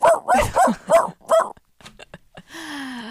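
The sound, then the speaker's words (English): A person mimics a puppy with five quick, high yapping barks in a steady rhythm, fairly loud, followed by a few soft clicks and a brief rising tone. “Here's a puppy. There is no puppy, guys.”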